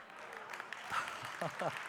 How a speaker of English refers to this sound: You guys clap at the craziest stuff.